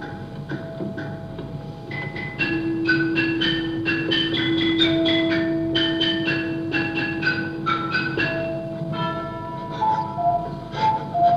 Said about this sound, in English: And what about this lovely little musical clock? Play it.